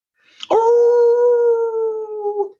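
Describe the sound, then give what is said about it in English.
A dog lets out one loud howl that starts with a sharp, bark-like burst, then holds a steady, strong tone for about two seconds before trailing off. No one speaks. “Yeah, I didn't think there was going to be so much energy in that bark”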